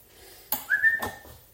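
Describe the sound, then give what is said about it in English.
A sharp knock or bump, then a brief high whine lasting a moment before another scrape, as a dog, drawn by the smell of cheese, paws and whimpers at a shut door she cannot get through. “Oh, here's the dog. The dog can smell cheese a mile away.”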